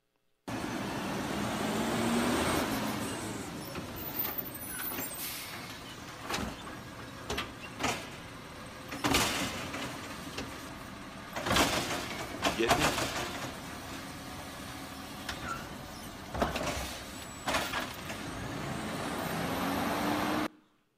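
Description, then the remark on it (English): A heavy garbage truck rumbles past, its engine droning steadily while several sharp hissing bursts of air brakes releasing punctuate the pass, with clanks and thuds mixed in. “You're right. That's the garbage truck.”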